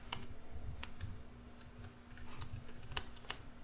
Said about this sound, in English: I'm typing. Yeah. Quit laughing at my shit, man. I couldn't help it. I'm just typing one finger at a time.